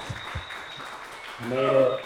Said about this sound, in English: Let's give a round of applause.